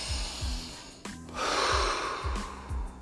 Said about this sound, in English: Devote time to relaxing. Try relaxation techniques. Breathing in and out, you know, counting to 10.